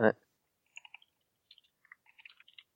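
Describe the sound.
Dice rattle and clatter across a hard surface in a scattered run of light, sharp clicks, quiet, right after a brief voice, as everyone rolls dice.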